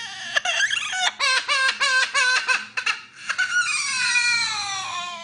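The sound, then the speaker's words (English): A parrot mimics a crying baby: a quick series of loud, high, harmonic sobbing bursts, then one long wavering wail that slowly falls in pitch, with no other voices. “It sure sounds like a baby, but guess what it is? It's a parrot.”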